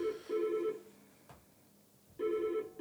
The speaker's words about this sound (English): Which, just phone calls, man. It's all good. We get a phone call every podcast. We're not even recording at the same time of day today, and phone calls coming through.